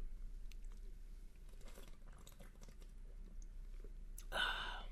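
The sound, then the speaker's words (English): Someone takes a quiet sip of a drink: soft wet mouth clicks and smacks, then a brief, louder slurping burst near the end. No one speaks. “Good sip.”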